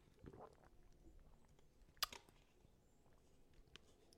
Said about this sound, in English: Excuse me, I had to take a sip of water.